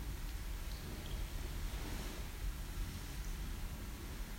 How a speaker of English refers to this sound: The water is moving. This fountain is operated with electricity. If we were to pull the plug, the water would become more still.